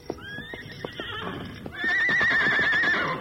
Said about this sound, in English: As he entered the alley, he heard Scout's familiar whinny. Steady, Silver. Silver responded to Scout and then led the way to the door of the wagon shed in the rear of Jason Fletcher's general store.